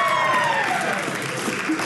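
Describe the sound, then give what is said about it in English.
An audience claps and cheers for a couple married 13 years with three children, a dense wash of applause with a few voices whooping above it, sustained at an even loudness throughout. “Y'all can cheer for that.”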